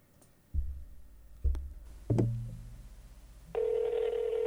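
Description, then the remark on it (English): Three dull handset clunks and clicks come first, then a steady, unbroken telephone dial tone starts and holds loudly to the end as a call is placed, with no voices. “You may be wondering why you're hearing a dial tone”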